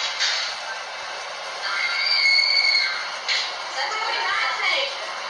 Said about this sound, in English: So here's the audio for the escape room scream.